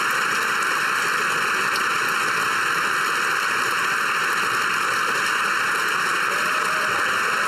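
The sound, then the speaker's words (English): A large crowd applauds and woos without pause, a dense, steady wash of clapping that holds at an even, fairly loud level for several seconds with no speech over it. “Look how long this applause goes for.”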